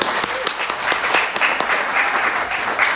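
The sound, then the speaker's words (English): A crowd of people applauding, a dense, steady patter of many hands clapping at once with no pauses, holding an even loudness throughout. “By the way, let's give a clap offering.”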